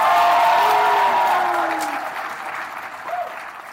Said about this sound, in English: All right, thank you guys so much. One more round of applause for Amy Jo Johnson.